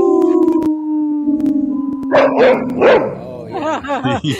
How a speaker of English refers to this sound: A quartet of howling with a dog barking. That's and, awesome. You know, that's perfect.